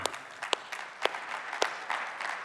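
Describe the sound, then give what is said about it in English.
Soft, scattered, muted golf-clap applause from a small group, with a few sharper individual claps standing out against a steady, quiet patter of hands. “There's a little bit of a muted golf clap going on right now, simply because we're thinking about our own stories and our relationships and all”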